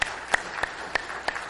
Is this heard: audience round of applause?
yes